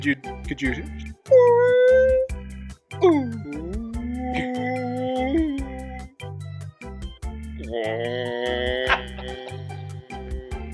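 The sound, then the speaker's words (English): A voice imitating whale calls: several drawn-out, wavering wails that slide up and down in pitch, some rising into high squeals, over a steady thumping beat in the background. “Do you know what the sounds that whales make?”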